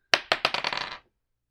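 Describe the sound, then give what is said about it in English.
Dice clatter onto a hard table, a quick run of sharp bouncing clicks that speed up and fade as they tumble to a stop, with no talking. “10. 10. So close. My dice.”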